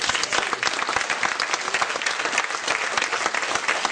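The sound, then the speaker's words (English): An audience at a church service claps and applauds steadily in praise of God, a dense wash of many hands clapping together, sustained without a break for several seconds with no one speaking over it. “Come on, give the Lord a hand clap.”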